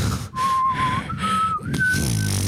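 People in a crowd whistle together, a steady, clear whistle holding a mid-pitched tone, stepping slightly higher twice, over a dense wash of breathy background noise with no speech.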